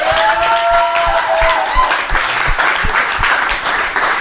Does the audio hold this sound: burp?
no